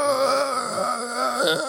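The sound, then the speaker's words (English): A man lets out a sustained, strained guttural yell, an impression of John Berthold's Punisher growling scream. It holds one loud, rough, wavering tone for under two seconds with no words. “Fucking guttural yell.”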